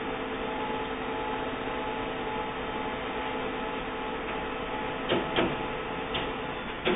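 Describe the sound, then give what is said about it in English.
A printer hums and whirs steadily with a mechanical drone while printing a test page, then gives a few sharp clicks and clunks toward the end as the page feeds through; no one speaks. “Test page successfully sent to printer. The light is flashing. Printer comes on.”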